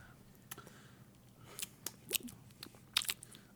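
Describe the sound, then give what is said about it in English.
Crunching and chewing of a Jolly Rancher hard candy, with several sharp, bright cracks scattered over a few seconds and soft mouth noises in between, no talking. “Still chewing on that Jolly Rancher?”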